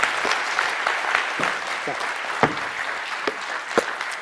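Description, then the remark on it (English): A church audience claps steadily to welcome a girl from the church, a dense, continuous round of applause with a few sharper individual claps standing out above the wash of hands. It holds at an even level throughout. “And so today I'd like for you to welcome with a big round of applause”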